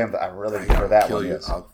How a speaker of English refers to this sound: I almost slammed the table, but I didn't. Slam the table.